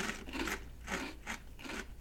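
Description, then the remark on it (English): Crisp, crackly crunches of someone biting and chewing a russet potato chip with skin on the edges, four or five bright bursts in a steady chewing rhythm, fairly faint, with no talking. “And it's good crunch. Great crunch. Tastes like a chip.”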